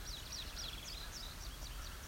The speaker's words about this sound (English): So it's indigo bunting.